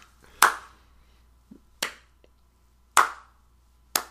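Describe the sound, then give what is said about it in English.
A demonstrated slow clap: four sharp, loud hand claps spaced over a second apart in a steady, deliberate rhythm, with a faint tap or two between them and no talking. “Might like, you know the slow clap?”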